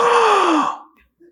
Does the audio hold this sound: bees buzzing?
no